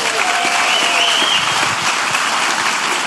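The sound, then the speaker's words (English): A church audience at a morning service applauds its online community, a loud, dense wash of many hands clapping that holds at an even level throughout without pause or rising cheers. “Can we give them a hand this morning?”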